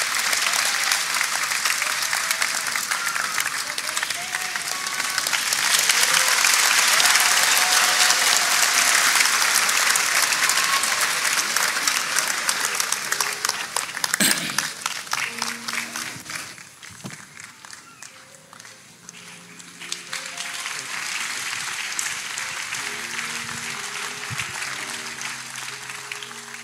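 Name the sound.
audience applause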